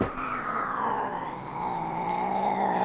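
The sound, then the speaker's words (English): Buzz, a cat fitted with a body mic, growls in one long, unbroken, throaty rumble with a rising whine to it, fairly loud, holding steady for about three seconds with no voices. “Dear Buzz, you've always had an odd way of showing your affection. Growling like a lion.”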